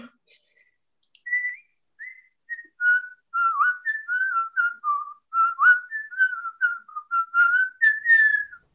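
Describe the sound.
A person whistles a flowing song melody solo, with clear sustained notes and quick slides, steady, continuing for several seconds without any talking.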